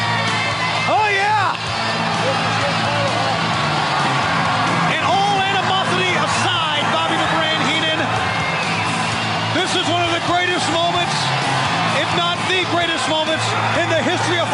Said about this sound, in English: They are. They're standing and cheering in Detroit.